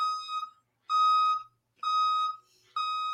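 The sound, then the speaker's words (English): A dump truck's reversing alarm sounds four steady, evenly spaced beeps, each a loud, flat electronic tone about half a second long with short silent gaps between them. “It's funny because there's actual dump trucks. Do you hear them?”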